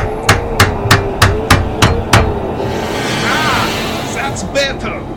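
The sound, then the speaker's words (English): Seven sharp hammer strikes ring out in a quick, steady rhythm, close and loud, followed by a pause filled with low rumbling noise and a couple of fainter clanks near the end. “Is it supposed to be doing that? Hang on. Where's my hammer?”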